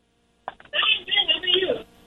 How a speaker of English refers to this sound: It sounds like you're way far away from the phone. Can you get a little closer? Yeah, we're close. Okay, it just sounds like you're on speakerphone, so it's pretty hard for anyone listening to the station to be able to hear you.